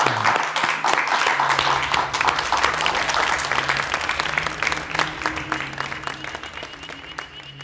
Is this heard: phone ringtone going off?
no